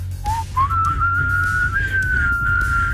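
A person whistles a single sustained, slightly wavering tone that slides upward and holds steady, fairly loud, over a low background rumble.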